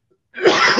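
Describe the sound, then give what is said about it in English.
A single harsh cough bursts out after a brief moment of silence, loud and raspy, with no speech around it. “Oh, no, it's coughing.”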